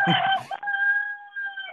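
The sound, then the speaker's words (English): A rooster named Benjamin crows loudly: a rough, raspy opening burst followed by a long, sustained, slightly wavering crow that holds steady for over a second before breaking off. “Shoo, rooster.”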